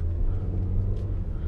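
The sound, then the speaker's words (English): An American car's transmission slipping mid-drive, heard from inside the car as a loud, steady low engine drone and road rumble, with no one speaking. “As I was driving, there was like a slip in the transmission, which should not happen.”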